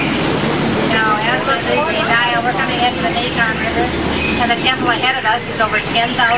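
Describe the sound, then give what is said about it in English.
A loud, steady rush of a waterfall pouring fills the whole clip, constant, with indistinct voices chattering underneath the roar. “Now, how many people have seen the back side of water? Look at this.”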